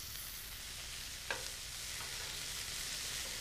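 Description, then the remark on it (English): Steady, crackling sizzle of burger patties being squished down and frying in a hot pan, two at a time, continuous, with a brief sharp pop or utensil tap partway through and no talking. “It's a lot of very scary sizzling noises.”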